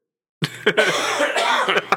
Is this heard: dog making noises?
no